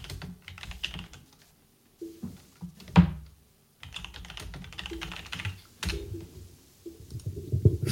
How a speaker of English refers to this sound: Typing. Oh, he's got a little idea. A little tinkle. A dinkle. Oh. He's clicking intensely.